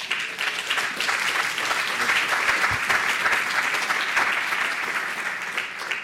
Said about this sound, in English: Let's give a big round of applause to Hjalmar.